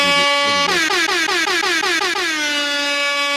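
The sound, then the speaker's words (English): A loud, sustained air horn blares alone as a salute to the Cleveland Cavaliers, its bright harmonic tone wavering and sliding in pitch as it pulses for a few seconds. “Big air horn for our Cleveland Cavaliers who went down last night.”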